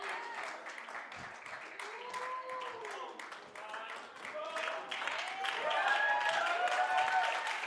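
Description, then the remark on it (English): A church audience claps in a dense, continuous patter while voices call out and shout over it, the applause swelling louder in the second half. “There ought to at least be some women clapping.”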